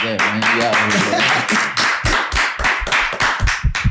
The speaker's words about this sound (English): Harder. You know applauding is your thing, dog.